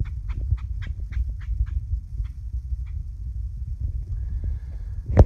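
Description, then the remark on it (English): A bird makes grackle-like calls in a quick, steady series of about nine squawking notes that thin out and stop, apparently taunting a cat nearby, set against a constant low outdoor rumble, with a brief sharp noise at the very end. “If I were a bird, I would taunt cats.”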